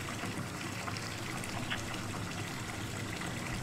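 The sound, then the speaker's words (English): Steady running water fills a flooded motel room, a continuous trickle and splash with a constant level and no breaks, and no voices present. “This is your motel. There's water everywhere.”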